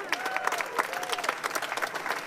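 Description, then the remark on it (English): A crowd claps steadily, a dense patter of many hands with a few cheers or voices rising above it, sustained at moderate loudness throughout. “Clap hard if you know you are imbued with the divine.”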